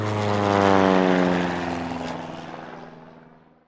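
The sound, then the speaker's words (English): The first plane that ever flew, an early propeller airplane at an air show, drones past low with a steady buzzing engine, growing louder then gradually fading as it flies away, with no voices present. “That is the first plane that ever flew, says Mama. It doesn't fly very high, says Sister.”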